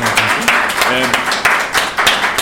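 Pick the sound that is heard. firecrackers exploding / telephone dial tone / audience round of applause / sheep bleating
audience round of applause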